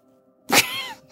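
A single cat meow rings out fairly loud, a bright drawn-out cry rising then sliding down, lasting about half a second against an otherwise quiet background.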